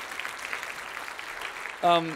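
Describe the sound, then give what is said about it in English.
An audience claps steadily for the speaker's son after he has spoken, a dense, even patter of applause, until a voice cuts in right at the end. “a big round of applause?”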